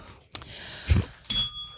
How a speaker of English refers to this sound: Everyone told me to hit the bell.